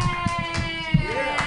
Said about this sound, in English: Keep clapping